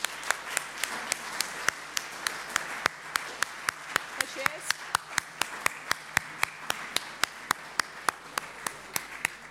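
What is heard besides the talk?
audience clapping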